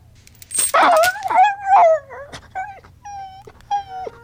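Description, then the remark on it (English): A dog whines and yips in a run of high, wavering cries with sliding pitch, loud, as its chain is pulled to correct it during sit training, followed by a few shorter whimpers and yelps over a low background hum. “I don't want to strangle my dog.”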